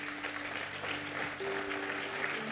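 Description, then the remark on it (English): An audience claps hands steadily on request, in a dense, continuous wash of applause, while a sustained piano note played on cue hums underneath, rising slightly in pitch partway through. “Clap your hands if you're learning something today.”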